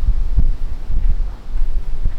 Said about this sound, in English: I feel like we've reached the end of the rainfall, but there could be more. So far, a pretty heavy storm.